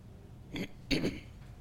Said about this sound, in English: You know, excuse me if I have to clear my throat.